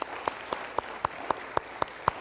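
An audience applauding to thank the worship team, heard as steady, evenly spaced claps, about nine in a row at a brisk even rhythm, moderately loud over faint background noise, with no talking.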